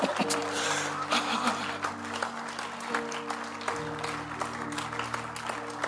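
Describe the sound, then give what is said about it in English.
Scattered, half-hearted applause from an audience during a sermon, a thin patter of claps over a steady low hum, continuing unevenly without building to a loud ovation. “Your clapping is very anemic, but it's not a problem.”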